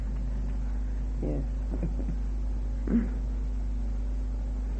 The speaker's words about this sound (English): Is it that noise out there? What is it that's making that noise? Refrigerator. Yes.